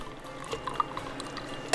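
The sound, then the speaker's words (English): A quiet pour of fizzy sparkling wine topping up a cocktail mixture in a champagne flute, with soft crackling bubbles and a few small bright drips and ticks scattered through it. “So you're topping up the mixture in the flute. Bubbles bubbling up.”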